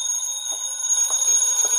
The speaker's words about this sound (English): Then the phone rang.